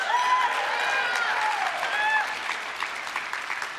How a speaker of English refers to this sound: If you're sitting next to your wife or next to your girlfriend and they clapped really loud on that one, note to self.